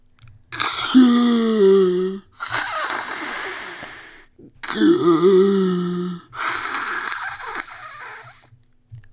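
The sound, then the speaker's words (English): A voice imitates slow, heavy Darth Vader-style respirator breathing, done by the story character Turtle: two long cycles of a rasping, voiced inhale followed by a hissing exhale, loud, with no talking. “Turtle tried his Darth Vader breathing to help slow down his crying.”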